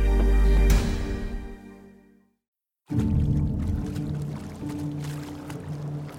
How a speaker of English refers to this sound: One chilly morning in February 1910, Otto and Paul Smits paddled their small boat up a creek in Washington State.